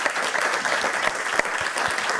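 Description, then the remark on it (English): An audience applauds steadily after a panel session, a dense wash of overlapping hand claps at a consistent, fairly loud level with no voices standing out. “Would you say a huge thank you? That's entirely thanks to this brilliant group here.”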